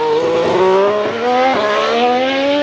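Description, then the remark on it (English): A high-revving Formula One hybrid race car engine, combining a V6 engine with turbochargers and electric motors, screams loudly and steadily, its pitch climbing with brief dips as it shifts gears, with no voices present. “Formula One now is actually a hybrid, and so they have a combination of electric motors, turbochargers, and a V6 engine.”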